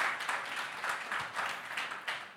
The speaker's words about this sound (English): I think I need to receive a hand of applause, right? Thank you.